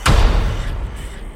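A single heavy slam as something shuts hard, loud, with a deep booming thud that rumbles and fades over the following second. No voices.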